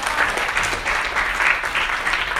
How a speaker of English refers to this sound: You should just give them a round of applause. They've been working really hard on this.